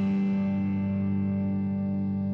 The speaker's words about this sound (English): The only song in the history of songs about a guy doing a podcast about philanthropy from his attic on Long Island. The only song that references an attic.